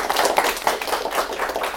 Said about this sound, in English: Yeah, just have a round of applause